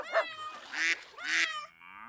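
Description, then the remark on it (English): A short burst of barnyard fowl noise: a few loud, harsh squawks and clucking calls from hens and a rooster kept in a coop next to a barn, overlapping briefly with no one talking. “So the woman went out and bought hens, a rooster, and some little chickens, and she put them all in a coop next to the barn, and they crowed and clucked and squawked, making quite a racket.”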